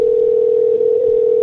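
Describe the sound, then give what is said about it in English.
A telephone dial tone after a call is hung up hums steadily and loudly, one unbroken pitch held for the whole moment, with no voices or other sounds around it. “Oh, he was like yelling with his mom on the phone and I hung up on him.”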